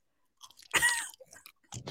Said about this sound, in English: I don't have a problem with ASMR, but like eating ASMR, I can't fucking do it because I like the chewing shit is like one of my biggest pet peeves.